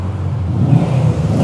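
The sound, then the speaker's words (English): A four-wheeler big buggy engine revs with a loud, low, throaty rumble that swells slightly as it goes by. No one speaks. “And because of that, you know, if this was like Grand Theft Auto, like I would like totally take that car. Like, because it's not even a car. It's like that four-wheeler big buggy.”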